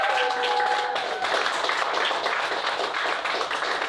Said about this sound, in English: So remember, clap for whoever you think was the funniest and most fucked up tonight.